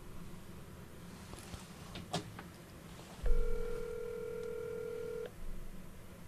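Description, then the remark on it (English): A telephone keypad tone while a call is placed: after a few faint clicks, one steady electronic beep holds for about two seconds, fairly loud over a low background hum, with no talking. “Just you calling.”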